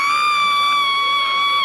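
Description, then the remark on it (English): A woman at casino slot machines lets out a single long, piercing shriek of excitement after hitting the jackpot, held at a steady high pitch for under two seconds, loud with nothing else around it. “The shouting was from a woman who just hit the jackpot.”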